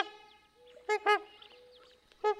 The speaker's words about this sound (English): The tundra swans have a tiny yellow coloration on their beaks next to their eyes, slightly different beak structure, and a higher pitched whooping call. The trumpeter swans tend to have a lower pitched call that sounds a bit like a French horn.